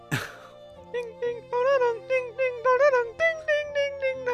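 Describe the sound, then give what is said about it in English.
A sharp click, then an electronic doorbell, rung by someone at the door, plays a bright, melodic tune of about a dozen short notes in a quick, bouncy rhythm, each note slightly bending in pitch. “Oh, Nick can hear the doorbell, too.”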